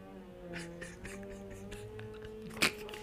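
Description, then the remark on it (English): A neighbor's vacuum cleaner runs in the apartment upstairs, recorded with the mic held up towards the ceiling. It is a faint, muffled, steady motor drone with layered low tones, broken by brief scraping whooshes and one sharper hiss near the end. “That's the first time I've ever heard the vacuum.”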